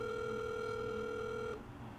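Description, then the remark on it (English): A phone call ringing out over a speakerphone: one steady, buzzy ringback tone holds for about a second and a half, then cuts off to quiet line hiss. No one speaks. “All right, we're calling him. He's on speaker.”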